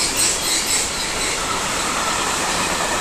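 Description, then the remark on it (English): A loud train covered in graffiti rumbles past, a steady roar of wheels and rolling stock filling the whole range, with faint high squeals riding on top. No one speaks. “That's a really loud train.”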